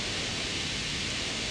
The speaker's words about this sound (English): There's just a whole bunch of noise that plays for the outro. Yeah, it's like running water. But yeah, it kind of sounds like. Yeah. Just lots of effects and distortion over it.